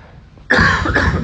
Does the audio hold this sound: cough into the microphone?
yes